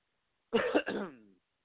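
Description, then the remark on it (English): A phlegmy cough in two quick bursts late at night in New York, with a throaty, gravelly clearing sound that trails off into a brief voiced rasp, followed by silence. “As I cough up phlegm.”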